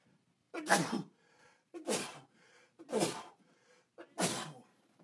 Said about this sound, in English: I'm going to sneeze.